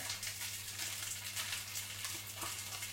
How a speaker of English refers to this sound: as we lay that beautiful back bacon into the frying pan.